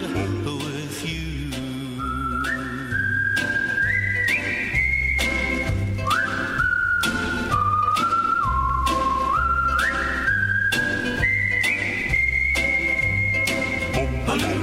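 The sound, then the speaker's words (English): A clear, bright whistled melody rides on top of a steady band accompaniment, moving in sustained stepwise notes over a rhythmic beat with bass and percussive strums throughout. “Wow, they're killing me with that whistling there.”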